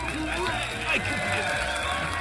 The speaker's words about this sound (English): The crowd erupts again into applause, captivated by the host's vivid description and the allure of the magnificent chariot before them.